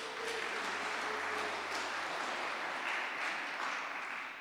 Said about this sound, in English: Yeah. Round of applause. That was excellent.